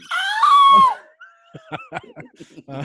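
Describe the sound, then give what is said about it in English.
A voice imitates a frightened yelp made on seeing a giant spider on the wall, a loud, strained, high-pitched cry lasting about a second, followed by quieter, choppy vocal sounds like soft laughter. “And I let a bit of a yelp.”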